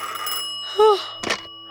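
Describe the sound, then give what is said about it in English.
A telephone rings once in a short, bright metallic burst, fairly loud, following a sustained tonal hum and a brief rising-and-falling tone: a phone call received by actress Phyllis Coates in the early hours of the morning of June 16th. “In the early hours of the morning of June 16th, Phyllis Coates, the actress who played Lois Lane in the Superman series, said she received a phone call from an extremely agitated Tony.”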